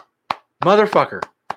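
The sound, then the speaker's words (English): Three sharp, separate hand claps spaced irregularly, with a loud voiced vocal sound, like a whoop or exclamation, between the first and second clap; clapped by hand in place of an applause sound effect. “I wish I had a fucking applause sound effects. I had no sound effects. I got my hands.”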